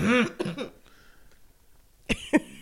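A loud, hoarse cough with a rough voiced rasp breaks out, followed by a couple of shorter hacks, then a brief pause and two more sharp, explosive coughs.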